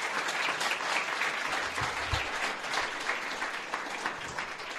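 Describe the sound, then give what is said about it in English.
Steady applause from a crowd, a dense wash of overlapping claps that holds at an even, fairly loud level for about five seconds without pause. “A round of applause.”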